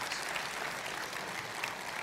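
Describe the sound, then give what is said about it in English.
A church audience claps steadily, a dense, even wash of applause that holds at a constant level for a couple of seconds without anyone speaking over it. “And really, you can applaud that.”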